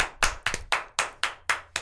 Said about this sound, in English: Oh, they're clapping.